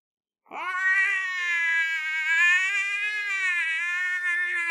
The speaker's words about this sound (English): Anyways, suddenly, the calm night is shattered. Shattered by screaming.